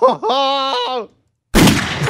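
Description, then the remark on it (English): A held, voice-like tone fades to a brief silence, then a single loud gunshot sound effect bursts in as a harsh, noisy blast that rings on briefly. “Hey, coach, if they really, really, really want to delete it, it's the gunshot.”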